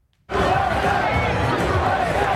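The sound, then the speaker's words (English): Massive crowds across America erupt in loud, sustained cheering and shouting, celebrating the networks calling the race for Joe Biden: a dense roar of many voices that starts abruptly after a brief silence and holds steady. “Massive crowds across America rejoiced in the wake of the networks calling the race for Joe Biden.”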